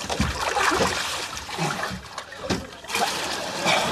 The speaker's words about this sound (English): That's the hot water. Turn it off.